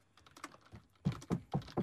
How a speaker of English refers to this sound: still typing, so.